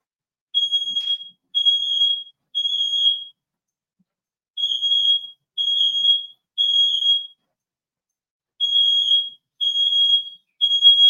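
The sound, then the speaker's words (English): A smoke alarm, set off while the oven was on, blares in a repeating pattern of three loud, piercing beeps followed by a short pause, cycling three times with no other sounds. “I had the oven on and smoke alarm went off.”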